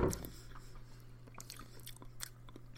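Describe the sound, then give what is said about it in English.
Wet mouth sounds of a tongue slapping and smacking while tasting wine: soft irregular clicks and squishes after a brief louder burst at the start, with a low steady hum underneath. “So this is the ASMR section of the podcast where we slap our tongues around.”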